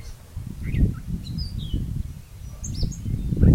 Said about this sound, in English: We're about to start our cherry picking on a Sunday morning, and it's sunny and just a little bit breezy, and all you hear in the cherry orchard are the birds.